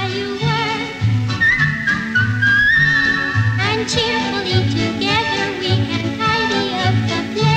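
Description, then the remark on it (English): A bright whistled melody glides and wavers over a full musical backing with a steady bass pulse, the whistling carrying the tune at moderate loudness throughout. “If you like to whistle while you work, well then, you're in luck. You found us. Just whistle.”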